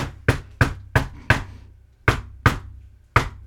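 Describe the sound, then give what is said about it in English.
Seven sharp knocks rap out a deliberate rhythmic pattern, a secret knock, on a front door: a quick run of four, a pause, then three more with uneven spacing, like a coded signal, with no voices. “knocked the secret knock on the front door, which was pretty much the knocking version of the Blue Danube”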